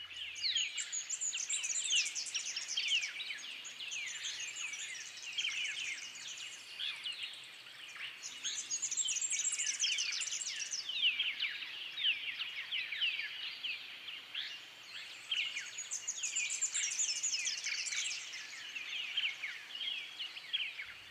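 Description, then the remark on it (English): A dense dawn chorus of many songbirds singing from shrubs and song perches in the twilight before sunrise, in still, cool air. They twitter and chirp at once, continuous and layered for the whole stretch, with overlapping high trills and tweets and no voices. “This mass of twittering is heard primarily from songbirds, which suggests its purpose is to facilitate the attraction and bonding of mates and to define and maintain foraging and breeding home ranges.”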